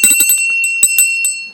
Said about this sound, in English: Let me ring the story bell.